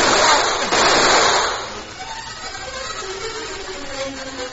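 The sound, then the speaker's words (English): Three loud gunshots from a silver-plated gun ring out in a quick, harsh burst by a river, two striking the cliff face above the river and the third hitting a miner, then fade into a lingering echo with faint background noise and murmuring. “Three shots from a silver-plated gun that had lain in the creek bed for 3 weeks.”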